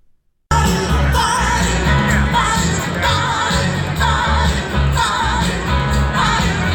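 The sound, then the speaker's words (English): A loud crowd at Madison's LaborFest at the Labor Temple bursts in after a brief moment of quiet, a dense, steady roar of many voices with scattered shouts and yells rising above the hubbub. “Madison's LaborFest brought a huge crowd to the Labor Temple.”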